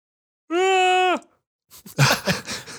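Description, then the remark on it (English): A loud, drawn-out voiced yawn that holds a steady tone for under a second before dropping off, followed shortly by someone starting to talk. “Inopportune yawn.”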